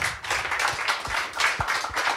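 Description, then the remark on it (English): A crowd applauds, many hands clapping in a dense, steady patter that holds at an even level throughout without anyone speaking. “I think a round of applause there.”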